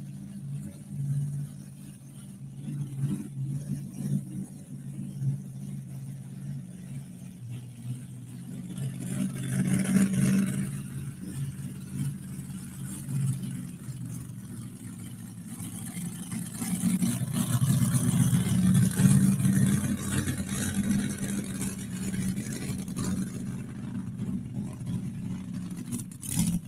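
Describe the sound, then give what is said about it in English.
David Hunt's pulling truck, the Shameless machine, roars steadily during its pull, its deep revving swelling in bursts partway through and again more strongly later, loud with a rough, droning low rumble. “Yeah, that was the Shameless machine at David Hunt.”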